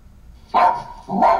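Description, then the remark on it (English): An Amazon Alexa smart speaker, asked to bark like a dog, plays its "Jurassic Bark" sound: two loud dog barks about half a second apart, each sharp at the start and trailing off slightly, with no talking around them. “Bark like a dog.”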